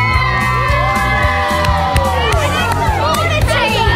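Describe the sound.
A loud crowd cheers and shouts continuously, with many overlapping voices including children's high yells and whoops, dense and close for the full few seconds.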